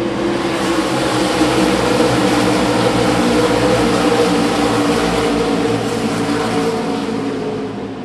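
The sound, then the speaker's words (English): A pack of stock cars roars off together at the green-flag start of a 300-lap Xfinity Series race at Bristol Motor Speedway. It is a loud, dense wall of engine noise that holds steady for several seconds before easing slightly at the end. “Green flag waves and the race begins.”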